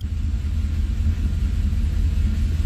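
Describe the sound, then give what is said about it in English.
A steady low car rumble heard over a caller's phone line, a continuous droning engine and road noise with no speech, constant in level throughout the short stretch. “Oh, that's all you car sounds.”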